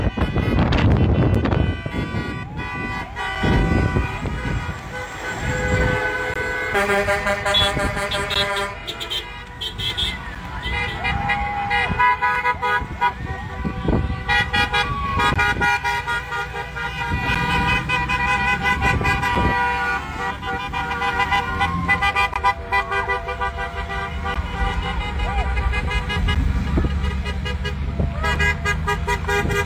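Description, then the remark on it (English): A trucker convoy in Canada, heading across the country to Ottawa, rolls by, blasting their horns in a loud, overlapping chorus of long, sustained toots that continues almost without pause, with engine rumble and some voices mixed underneath. “Is there still more trucks?”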